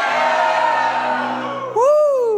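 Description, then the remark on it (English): A large audience roars together in a sustained, loud shout, then a single voice rises sharply above it in a strong upward whoop near the end. “And it happened when the people heard the sound of the trumpet and the people shouted with a great shout.”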